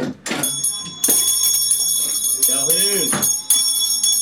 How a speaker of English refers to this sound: Okay, you got the bell. Good work, man. Good job. Nailed it. It works.